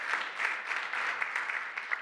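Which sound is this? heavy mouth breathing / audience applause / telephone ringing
audience applause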